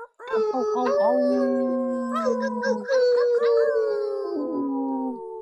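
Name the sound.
people imitating wolf howls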